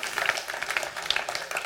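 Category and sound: crowd, audience clapping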